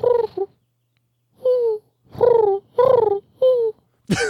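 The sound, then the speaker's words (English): A person imitates a dove's cooing: about five low, throaty, wavering coos separated by short pauses, moderately loud with no other sounds around them. “I'm a dove. I like that you're a dove, but occasionally you like to replicate an owl.”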